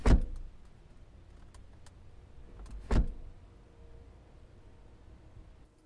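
A car left running idles with a steady low rumble while a car door thuds shut twice, once at the start and again about three seconds later.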